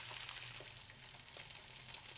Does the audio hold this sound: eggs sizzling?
yes